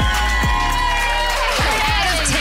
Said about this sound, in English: Should we give her a round of applause?